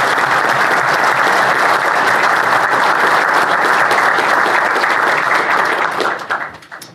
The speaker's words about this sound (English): So if we could give him a round of applause.